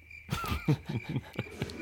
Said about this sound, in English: Crickets.